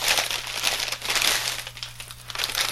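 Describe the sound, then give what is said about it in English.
Steady paper crinkling and rustling as a hand-painted gift bag is opened, revealing a bag within a bag and red paper, with irregular bursts of crisp crackle lasting the whole stretch and no voices. “it's a bag within a bag. Special. And now it's a red paper.”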